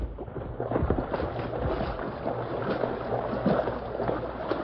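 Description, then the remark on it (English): Fast, rushing stream water, deep enough to reach the hips, churns steadily with heavy sloshing and splashing as someone wades through it; continuous and fairly loud, no voices. “Careful, Tonto. The water's mighty fast. Plenty deep, too.”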